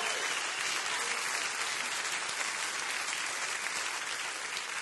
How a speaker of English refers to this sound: Somebody clap your hands all over this house right now.